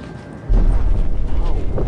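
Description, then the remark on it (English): A deep, heavy rumble from a distant volcanic eruption swells up suddenly and rolls on steadily, low and booming, with wind buffeting the microphone throughout. “I mean, it's like this deep rumbling every time.”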